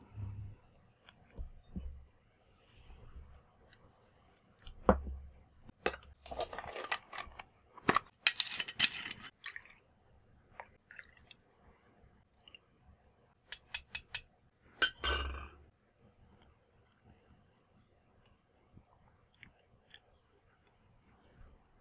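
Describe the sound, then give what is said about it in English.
Sporadic clinks and clatters of glassware being handled while preparing a glass of absinthe, with soft low thumps, a busy run of sharp clinks midway and a quick cluster near the end, then quiet. “While you do that, I'll have a glass of absinthe, but I'll be right back.”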